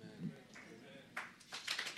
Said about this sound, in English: Yes, you can clap, for sure.